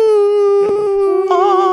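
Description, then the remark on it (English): Dogs howling in a long, steady, mournful tone that rises slightly near the end, the sustained note rich with harmonics, loud and continuous with no talking. “And there's the dogs howling in the background.”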